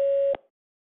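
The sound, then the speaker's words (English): A single steady electronic beep from a phone system, signaling the start of recording a greeting, loud and clean, holds for about a third of a second and then cuts off abruptly into silence, with no voices present. “If you're ready to record, record after the tone.”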